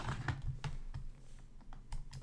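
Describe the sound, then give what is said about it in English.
Typing on a computer keyboard while looking something up, a run of quick, irregular key clicks with a low background hum, no voices. “I get to hear me click-clacking on the keys a little bit.”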